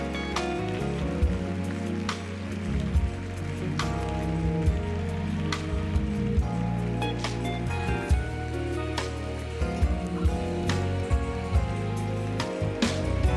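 A church audience claps continuously in praise as people come forward to the altar, a dense crackling patter of many hands with sharper individual claps standing out, over steady low sustained tones like organ or keyboard. No one speaks.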